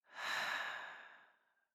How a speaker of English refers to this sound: we're going to take a deep breath in and out, and I want you to just hold that thought, that insight at the top of the breath. So breathing in, holding that intention, and breathing out.